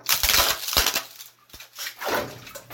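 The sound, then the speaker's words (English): Ice is dumped into a bathtub of cold water at home for a cold plunge, in several noisy bursts, a crunching, rattling clatter with splashy hiss between pours and a steady low hum underneath. “And now has as much ice as I possibly have on hand to add to it.”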